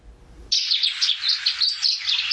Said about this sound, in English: The sparrow may not be the flashiest of birds, but these russet sparrows are known in Taiwan for how they sound.